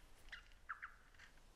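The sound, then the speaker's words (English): A lyrebird imitates a black cockatoo's wailing, crying call, giving a few short, rising, plaintive notes that sound faint against a quiet outdoor background, with no voices. “You hear that wailing, crying sound there? That's a perfect imitation of the call of the black cockatoo.”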